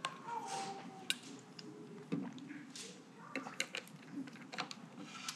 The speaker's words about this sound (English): I'm gonna take a sip of water and then I'll read this to us, guys.